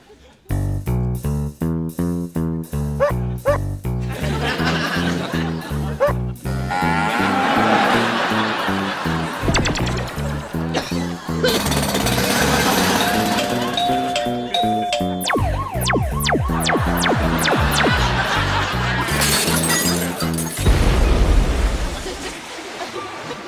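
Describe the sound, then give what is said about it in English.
Random sound effects played on an electric keyboard with built-in sound effects play nonstop: chiming ding-dong tones, harmonic synth notes, buzzy hits and a booming crash near the end, all loud with no talking. “anyone who's ever touched like an electric keyboard with sound effects on it has done exactly what Ross”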